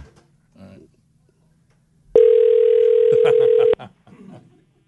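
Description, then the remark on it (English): A single ringback tone from an outgoing phone call, a loud, steady electronic tone lasting about a second and a half, with faint, muffled voices just before and after it. “Okay, I think we have his number. We're going to call him back.”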